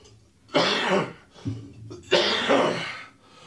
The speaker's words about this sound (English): And while … coughs.